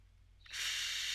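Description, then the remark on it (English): Michael Winslow imitates TV static with his voice, like turning on a TV: after a short quiet moment, a steady, loud, bright hiss switches on abruptly and holds without variation until the end, with no words spoken. “Static noise.”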